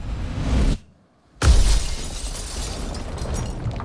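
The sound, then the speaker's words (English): A landslide of rocks, dirt and logs pours across a highway: loud rumbling, crashing debris cuts to near silence, then the earth smashes into a car with shattering windshield glass and crumpling metal hood, followed by sustained gritty rubble noise. No one speaks. “The avalanche of earth smashes into their car, shattering the windshield, crumpling the hood.”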